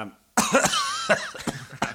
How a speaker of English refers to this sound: So that was a combination of the cold. And something else. and my cough. Yeah. It was more a direct result of the cough, I think.